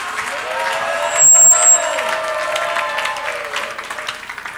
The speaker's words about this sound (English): It's a good place to clap and to shout.